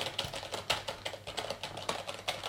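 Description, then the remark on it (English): Rapid, uneven typing on a computer keyboard placed to the left of and close to the microphone during a typing test, a steady stream of sharp clicky keystrokes with brief pauses, heard on its own without any voices. “This is just me sort of typing at the keyboard and talking at the same time.”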